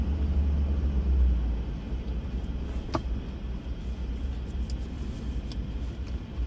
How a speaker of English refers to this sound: And then they hit this. Traffic.